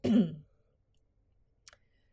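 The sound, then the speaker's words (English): A single short, gruff throat clearing, followed by quiet and one faint click near the end. No one speaks. “I clear my throat.”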